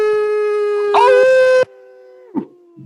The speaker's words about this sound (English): And as always, find, follow, live your truth, and follow the wolf within you. Howl!